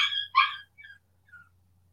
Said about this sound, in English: I don't know what's going on with my dog right now. I can't. She probably bit herself. I hope you're okay, Cricket.